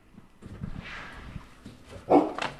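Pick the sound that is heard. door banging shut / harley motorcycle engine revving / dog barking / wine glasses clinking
dog barking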